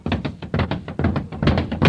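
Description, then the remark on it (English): A punching bag at a prize fighter's training camp is struck in a fast, steady flurry: about nine dull, thumping blows in two seconds, each one a loud, broad thud with no voices in between. “I wish you'd get me a new punching bag. This one keeps punching me back.”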